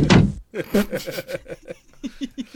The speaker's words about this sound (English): Well, gotta close the door before you go. Yeah, do the door sound.